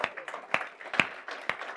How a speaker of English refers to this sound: Are you with me? Amen. Come on. One clap, so we all clap. Come on.